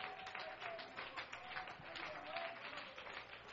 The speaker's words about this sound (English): Somebody give Him a good hand clap of praise right now.